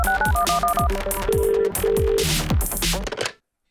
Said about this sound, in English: Can we just play the intro to the Motorola even though we're not doing it? Play the sting. Hello, Moto.